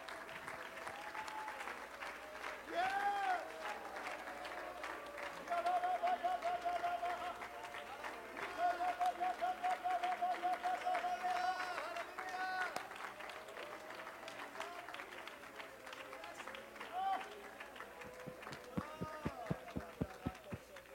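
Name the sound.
audience clapping hands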